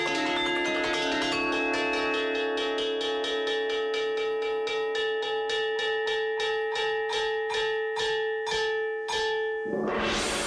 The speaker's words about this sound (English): The bell has ridges on it, which means if you strike those ridges, it excites certain frequencies. When you hear it, it actually sounds like there's multiple instruments playing, but it's literally just playing these two bells with drumsticks.